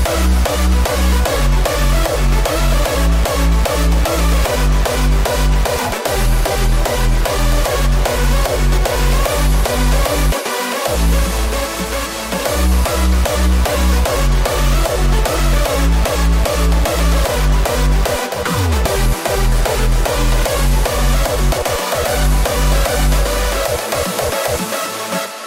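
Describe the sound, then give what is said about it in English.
Loud music dominated by a heavily boosted, very low bass tone, known as the mega sound, that pulses in steady repeating blocks beneath busy rhythmic layers, with a couple of brief dropouts and no voices. “This particular sound is referred to as the mega sound.”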